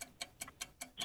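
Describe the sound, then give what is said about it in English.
A clock ticks steadily, six sharp ticks spaced evenly about a fifth of a second apart, crisp with nothing else around them, like a countdown timer running for a beat-the-clock quiz game. “Are you ready to beat the clock?”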